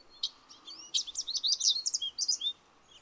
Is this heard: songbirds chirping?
yes